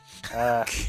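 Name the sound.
sneeze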